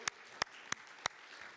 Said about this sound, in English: Amen? Let's give another hand to God. God, thank you.